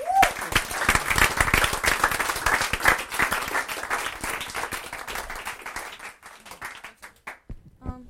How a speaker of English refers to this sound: So anyway, so that was a long time. Let's clap.